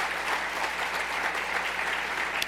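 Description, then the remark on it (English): An audience claps steadily, a dense, even wash of many hands with no pauses or voices rising above it, holding at a fairly strong level throughout. “Don't clap, because I only got 3 minutes.”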